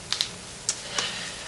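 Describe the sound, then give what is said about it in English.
A handful of sharp clicks on a computer keyboard, two quick taps followed by two more spaced apart, with steady background hiss and no talking. “Hello, computer. Just use the keyboard.”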